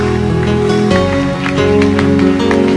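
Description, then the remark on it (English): A crowd claps steadily to thank God, in a dense, rain-like patter, heard over sustained keyboard chords that hold and shift in pitch throughout. “Lift your two hands and begin to thank God for honoring you. Yes, clap your hands.”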